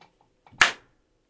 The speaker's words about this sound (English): I'm going to clap so you have like a slate marker.